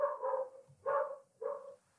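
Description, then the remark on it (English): Dogs barking outdoors in Bushwick, three drawn-out, somewhat muffled barks in an uneven rhythm, with no voices. “The dogs of Bushwick are barking.”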